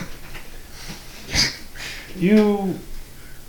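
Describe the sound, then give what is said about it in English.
Breathing heard from behind a door, with no voices: a quick, sharp sniffing inhale, then a longer, voiced, slightly wheezy breath that rises and falls in pitch, both fairly soft against a low background hiss. “You hear breathing in there.”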